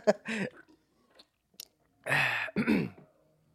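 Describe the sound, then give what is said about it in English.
Someone takes a sip from a bottle of Modelo beer: a brief slurp and swallow, a pause, then a louder gulping sip followed by a breathy exhale, with no talking. “Got to have a sip of the Modelo first.”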